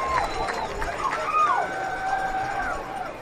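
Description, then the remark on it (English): A large American football crowd at a championship game screams and roars throughout, a dense wall of voices with individual shrill cries rising and falling above the steady din. “Not sure what the crowd was screaming about.”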